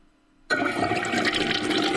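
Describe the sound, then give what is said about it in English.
A toilet flushes with a sudden loud rush of water that starts abruptly after a brief quiet hum, then continues as a steady, broad, hissing gush. “What about toilet sound?”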